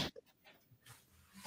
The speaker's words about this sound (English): Hello, dog. Dog ran into the cupboard door. She just fell off her bed and into the cupboard door and frightened herself.